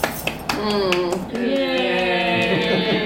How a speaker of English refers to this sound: Yay! Yes, polite round of applause.